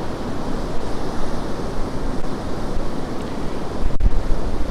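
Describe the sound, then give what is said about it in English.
Waves wash steadily onto the sandy beach at Puttsborough Sands in a continuous roaring hiss, with low wind rumble underneath and a slightly louder surge near the end, on a fine morning. No voices. “I've reached the far end of the beach at Puttsborough Sands.”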